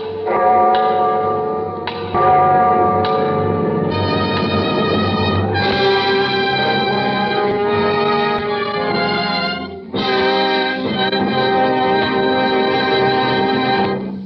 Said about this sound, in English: I hear the clock. The clock.